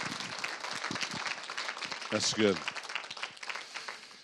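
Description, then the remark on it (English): An audience claps steadily for several seconds, a dense crackle of many hands, with a brief voice cutting through the middle of the applause. “Yeah, y'all can clap.”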